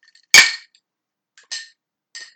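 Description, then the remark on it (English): Glasses, one holding a Bloody Mary, clink together in a toast: one sharp, bright ringing clink, followed by two softer, shorter taps about a second apart, with no talking. “Anyway, cheers, sweetie. Cheers!”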